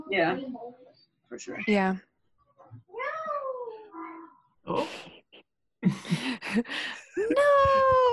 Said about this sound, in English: Well, that was the cat meowing and sitar.